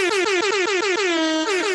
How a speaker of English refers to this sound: Can you get the fucking the boat horn shit?